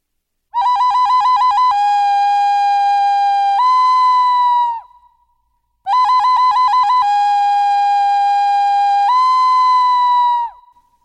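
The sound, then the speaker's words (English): A loud, clear bird call sounds twice in identical phrases: a quick run of short repeated notes, then long steady whistled tones that step up in pitch before fading. No one speaks. “And she remembered the first time she had heard that bird, when she had come for the interview, and she felt that same sense of welcoming and foreboding.”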